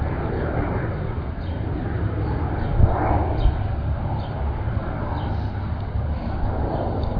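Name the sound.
airplanes flying overhead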